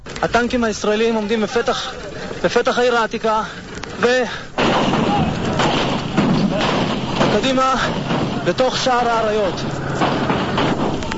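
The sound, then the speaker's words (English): A man talks, then a loud metal gate bangs open as a group bangs through it, and a dense, crackling barrage of gunfire takes over as they push into the old city, continuing as shouting voices break through the noise. “And, you'll hear both the banging of the opening of the gate where they bang through it, and then he's describing how they continue through that.”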